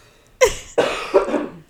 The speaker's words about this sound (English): Oh, hang on, I have to cough.